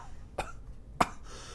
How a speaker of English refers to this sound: Are you actually coughing? Oh, it hurts. It hurts.